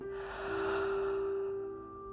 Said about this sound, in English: Maybe bringing a hand to your chest or a hand to your belly. And breathing in deep.